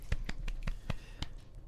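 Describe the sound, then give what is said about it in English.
One person claps a handful of times, about seven sharp, crisp hand claps in a slightly uneven rhythm, moderately loud, with no talking over them. “I wish I had more hands to clap.”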